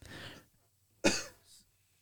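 human body sound, cough into a microphone

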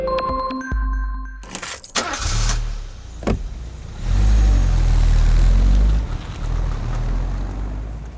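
vehicle, car sounds

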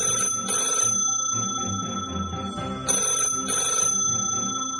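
household object, telephone bell ringing

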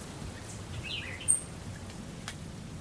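bird, birds chirping outdoors

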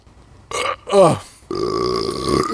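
human body sound, burp

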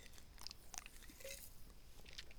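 food or drink, sipping tea

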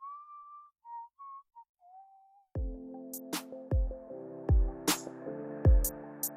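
human body sound, person whistling a tune

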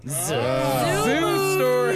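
animal, cow mooing

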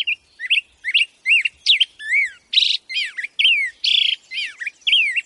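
bird, black-headed grosbeak song

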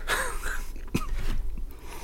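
human body sound, cough

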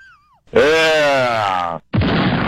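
sound effect, bomb explosion sound effect

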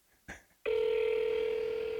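signal or alarm, phone call ringing

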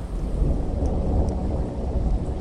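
nature, thunder

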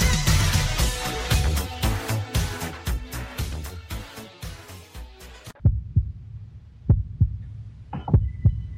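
sound effect, heartbeat sound effect

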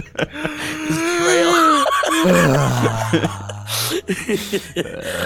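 human body sound, big yawn

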